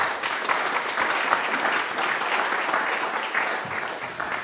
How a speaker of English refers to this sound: Round of applause for our panelists.